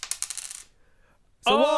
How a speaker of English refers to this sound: So, let's roll that dice again